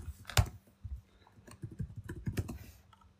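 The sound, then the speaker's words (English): Quick, irregular keystrokes clatter on a computer keyboard during a Google search for Mike Tyson, fairly quiet, with one sharper tap early on and a brief pause before another flurry of typing. “Keyboard.”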